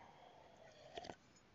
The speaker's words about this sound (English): Take a little sip of coffee here.